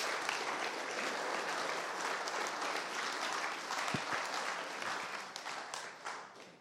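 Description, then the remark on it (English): A church audience at a morning service bursts into sustained hand clapping to the Lord Jesus, a dense, loud wash of many hands striking together that holds steady for several seconds before gradually thinning out at the end. “Can somebody give a hand clap to the Lord Jesus this morning?”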